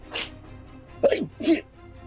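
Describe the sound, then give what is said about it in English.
A person acts out a sneeze with their voice: a breathy intake, then a loud, sharp double burst, with no other talking. “And then Bomblin sneezes, and all the papers go flying off.”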